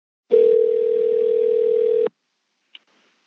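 telephone dial tone

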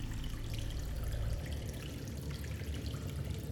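water trickling

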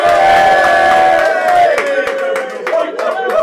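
crowd cheering

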